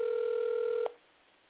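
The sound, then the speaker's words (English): A telephone call to a woman, placed from a different phone, ringing out unanswered: a steady, thin ringback tone over the phone line cuts off abruptly with a soft click, leaving faint line hiss. No one speaks. “I called her from a different phone, so she probably don't even know this number.”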